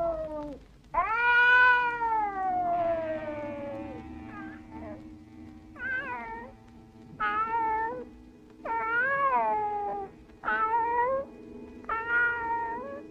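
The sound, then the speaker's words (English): Cats meowing insistently to be let in through a door: one long, drawn-out wail followed by a steady series of five or six shorter, rising-and-falling meows, with no one talking. “My poor kitties, I forgot, didn't I? I forgot to open the door for”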